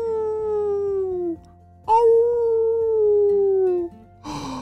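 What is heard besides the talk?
wolves howling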